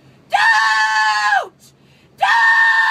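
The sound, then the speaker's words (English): A voice mimics people screaming about pronouns: two long, shrill, loud screams separated by a short pause, the second cut off at the end. “On the other end of it, you got people screaming about pronouns.”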